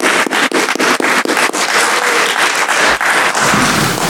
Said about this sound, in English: You'll stand and give him a good round of applause. It's well deserved, I promise. Well deserved.